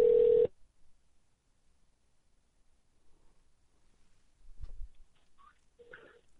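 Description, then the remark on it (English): A short, loud telephone tone bursts out at the very start, then cuts to a quiet, hissy line with a few faint clicks and soft noises, as a caller is put on the phone on the radio show Poker Fraud Alert Radio. “But let's put him on the phone here.”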